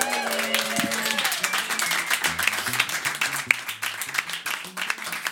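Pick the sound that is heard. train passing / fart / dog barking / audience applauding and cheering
audience applauding and cheering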